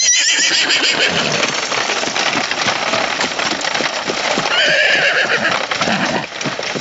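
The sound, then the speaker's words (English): Horses whinny over a steady, loud clatter of hooves as a horse-drawn bat coach, driven by Alfred with Bruce in the back, rattles along, the busy rhythmic clopping continuing throughout with no one speaking. “Bruce changes into his bat cloak and cowl and is driven in the back of the bat coach, which Alfred is driving with the horses.”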